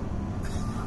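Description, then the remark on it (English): Car tires crunch over snow with a steady low rumble from the vehicle, the gritty crunching growing brighter and denser partway through the short moment. “All you'll hear is the crunch of the snow.”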